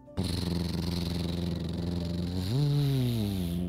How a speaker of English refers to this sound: As Juliana hid right near the tower, a purple pickup truck pulled up.